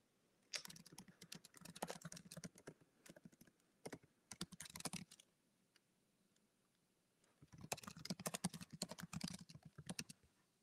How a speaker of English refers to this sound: Oops. And I apologize to the audience here. I'm typing questions to Fabian.